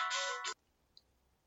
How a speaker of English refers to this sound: Had to take a quick break for a second. My wife was calling, as you heard on the phone, so wanted to answer that and say hello to my beautiful, loving wife.